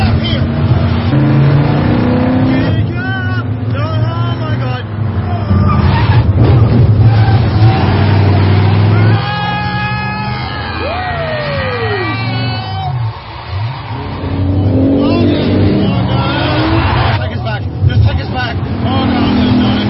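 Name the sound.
car driving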